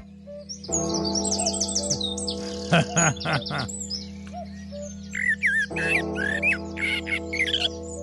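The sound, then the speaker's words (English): Many birds squawk and chirp together in a busy, overlapping chorus, with loud harsh calls bursting out now and then over a steady mass of high tweets. “A lot of birds.”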